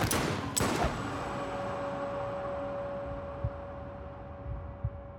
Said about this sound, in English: As they lean in to hear his response, three gunshots ring out.